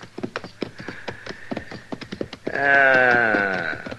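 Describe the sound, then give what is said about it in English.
Hooves clop in an uneven rhythm, then one of two horses by water in the cottonwoods lets out a loud whinny that wavers and slides downward for over a second. “Yeah, horses. Two of them.”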